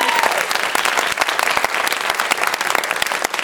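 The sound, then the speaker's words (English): An audience applauds steadily, a dense wash of many hands clapping at once that stays loud and even for a few seconds. “So, huge round of applause for that, right?”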